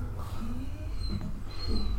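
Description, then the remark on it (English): A dog lets out a few thin, high-pitched whines over a low, steady background rumble, the whimpers faint and short with brief pauses between them. “That dog is concerned.”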